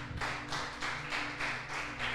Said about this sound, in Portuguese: Aplauda o Senhor Jesus.